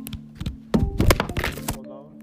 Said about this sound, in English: Drop my phone, y'all. I hope I ain't hung up on y'all.